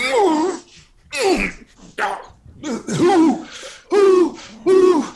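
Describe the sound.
A person imitates an owl, letting out a string of about six loud hooting calls in an uneven rhythm, with brief pauses between them and no talking.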